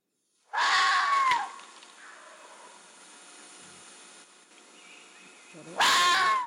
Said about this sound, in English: So I'll just show you what they sound like. So this is a scream of a vixen, like a female fox.